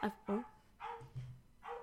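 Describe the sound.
A dog gives a quick run of four sharp barks, two rapid ones at the start and two more spaced out after, with a low murmur of voices in between.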